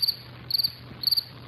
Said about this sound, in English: Hey, wait, crickets?